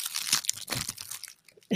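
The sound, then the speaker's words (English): The wrapper of a cold, partly thawed frozen snack being torn open: a quick run of crisp, crackly crinkling and rustling bursts lasting over a second, fading briefly before a short low thump at the end. “Okay, so I'm going to open mine so we can see what it looks like. Give us that ASMR.”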